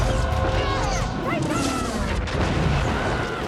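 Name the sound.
cannon fire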